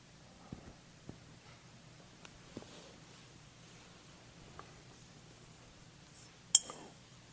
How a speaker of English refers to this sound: Bells arise.